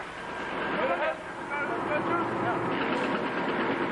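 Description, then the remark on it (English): The engine and turning rotor blades of a UN helicopter in Lebanon, an American Bellagasta flown by an Italian Air Force crew, drone steadily in the background, a constant mechanical rumble that persists throughout while a person talks over it. “You can hear the UN chopper in the background.”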